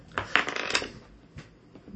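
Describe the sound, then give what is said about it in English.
Polyhedral dice, including a d8 rolled for damage, clatter across a tabletop in a quick burst of sharp clicks and tumbles, then a few sparser taps as they settle. Fairly quiet, with no voices. “I said roll a d8, and I'm like, that's a 9.”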